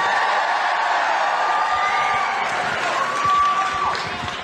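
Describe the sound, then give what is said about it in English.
A large crowd at a Trump rally cheers and whoops steadily for several seconds in response to Tudor Dixon speaking, a dense roar of voices with scattered higher shouts and a few claps mixed in. “Listen to Tudor Dixon and listen to the crowd respond as she spoke at the Trump rally.”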